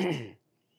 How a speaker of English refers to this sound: You know, something, I wonder if we could, is there a way to activate clearing your throat?